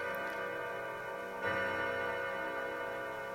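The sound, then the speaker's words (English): A clock tolls with a loud, sustained ringing chime, and a second strike partway through renews the resonant tone, which lingers steadily to the end. No one speaks. “So the clock tolls.”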